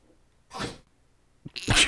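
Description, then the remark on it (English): A dog gnaws on a bone, making two harsh, scraping crunches separated by a short pause, with a brief low thud just before the second, louder one. “Hold on, my dog's currently dead. Nope, he's just yakking on a bone.”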